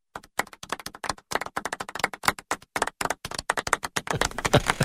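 Scattered, thin applause from a small golf crowd, with individual hand claps popping irregularly and thickening slightly toward the end. It sounds modest, with no voices.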